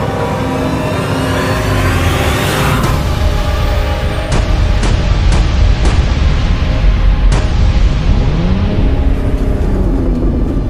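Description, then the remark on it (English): The powerful engine of the Batmobile, a black sleek vehicle, roars loudly and steadily throughout, its pitch rising and falling, while a series of sharp crashing bangs cut through midway as it crashes through a main gate. No one speaks. “They heard a loud engine roar and saw a black sleek vehicle heading straight towards them.”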